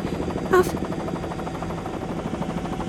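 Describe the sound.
Steady, rhythmic helicopter rotor chopping fills the whole stretch, fairly loud, with a brief voice cutting in near the start.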